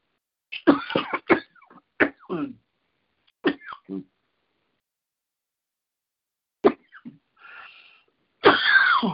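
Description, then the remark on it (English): A person coughs in a series of harsh, sputtering bursts, several in quick succession, then a pause before more strained coughs and a raspy throat-clearing, like a drink of water went down the wrong way. “While you're getting your composure there, sounds like a drink of water went down the wrong hatch.”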